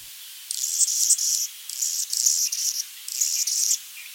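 A hummingbird, a bird native to North and South America, chirps in a thin, high pitch, in three quick buzzy bursts separated by short pauses, heard alone with no talking.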